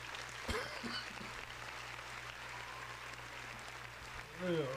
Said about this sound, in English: Oh my goodness! Very talented mouth. Round of applause for her mouth.